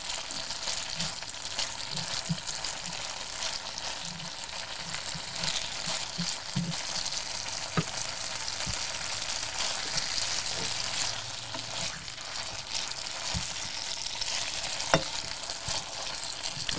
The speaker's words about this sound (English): You think we can get a tiny bit of cooking water in the pan? So this is called risottare, because it's like making a risotto, but instead of the rice you use the pasta.